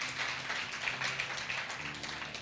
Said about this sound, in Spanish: Vamos, si le van a dar un fuerte aplauso, den un fuerte aplauso.